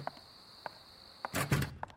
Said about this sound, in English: Here, I'll get the door for you.